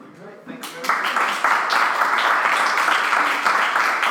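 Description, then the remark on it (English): Sustained applause from an audience, a dense crackle of many hands clapping that swells in within the first second and holds steady and loud to the end. “I'm still clapping.”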